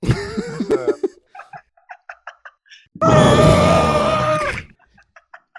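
A drawn-out, strained vocal cry, like a scream or an exaggerated yawn, bursts out loud and close for about a second and a half, preceded by a shorter groaning vocalization and scattered small chirpy noises.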